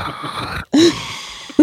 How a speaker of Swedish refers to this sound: Harkla lite. Och... harkla lite, ja.